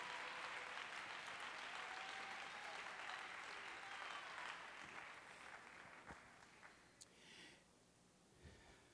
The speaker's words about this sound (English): Clap your hands to the Lord and give God praise.